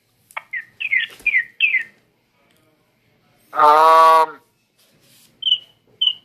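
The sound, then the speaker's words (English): Birds chirp outdoors in short bursts: a quick run of bright tweets, a longer harsh squawk-like call in the middle, then a few more high chirps near the end, clear. “I can hear the birds. Yeah. Yeah, they're all over the place.”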